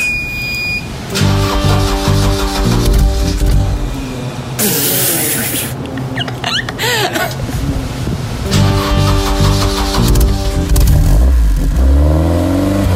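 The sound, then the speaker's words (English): A car engine cranks and fires up, then revs loudly several times, rising and falling in pitch, dominant throughout with a brief hissing burst in the middle. “Okay, should we start her up?”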